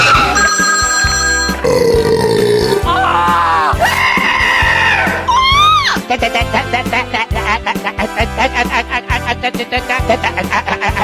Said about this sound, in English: So without further ado, here's my jerky game show jingle for you. Get ready to play What the Hell Is That Sound on Turn Up the Night